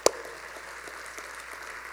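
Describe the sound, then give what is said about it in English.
A church audience claps for a pastor in a steady, dense patter, opening with one sharper clap up front, then a continuous wash of applause with no voices. “Yeah, you can clap for him.”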